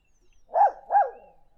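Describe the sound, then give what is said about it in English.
A dog barks twice in quick succession, two short, fairly loud woofs about half a second apart, with nothing else in the background. “Here's the barking.”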